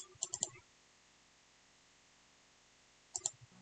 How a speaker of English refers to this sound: I don't know why I'm typing when I can just talk.